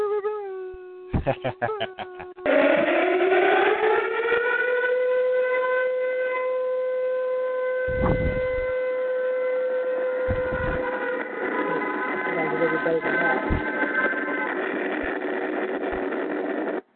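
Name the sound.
ambulance siren sound effect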